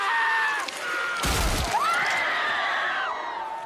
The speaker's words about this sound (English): like The Mandalorian, which is set in the Star Wars universe and centers on a bounty hunter played by Pedro Pascal, aka the Red Viper from Game of Thrones, aka the screaming guy featured in this clip.